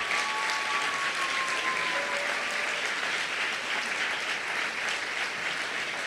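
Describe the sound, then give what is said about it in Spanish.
A church audience breaks into sustained, dense applause for God, a steady wash of clapping that holds at an even, loud level throughout, with a faint whistle-like tone drifting through early on. “¿Por qué no le dan un aplauso a Dios?”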